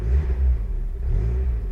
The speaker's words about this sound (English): Right, let's start up the four-cylinder 1.6 engine, which starts at first call, and just turn the blowers down a little bit. Settles into a nice little raspy idle.